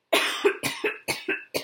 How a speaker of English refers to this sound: As you can tell by my lovely, unproductive cough.